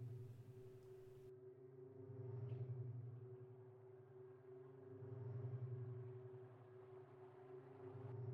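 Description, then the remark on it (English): A low, distant rumble of thunder rolls in two slow swells over a steady, droning low hum, faint and far away, with no voices. “Somewhere far off, there was a sound of thunder.”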